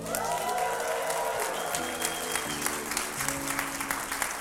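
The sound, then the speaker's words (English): An audience claps steadily in dense, sustained applause for the youth group, while sustained keyboard chords shift underneath and a few cheers rise briefly near the start. “Let me hear y'all give it up for the youth group today.”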